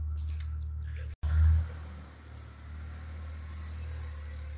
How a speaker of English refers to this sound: Looks like it sounds like another car is coming.